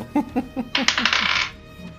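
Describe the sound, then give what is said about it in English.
Dice clatter across a hard table for a persuasion roll in a tabletop game: a few quick clicks, then a dense rattling tumble that settles into silence, fairly loud, with no talking. “Make another persuasion roll.”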